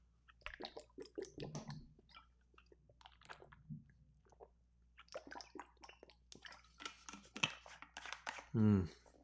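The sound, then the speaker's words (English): Wet mouth sounds of someone sipping water: small slurps, clicks and swallows over several seconds, ending in a louder gulp or satisfied exhale. “And before I do that, I'm going to take myself a drink of high-quality H2O.”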